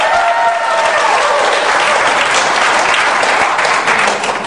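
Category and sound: crowd, audience clapping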